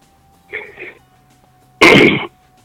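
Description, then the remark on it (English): Someone clears their throat: a soft, low grunt followed a moment later by one loud, harsh burst, with no talking around it. “Why do you always clear your throat before you talk?”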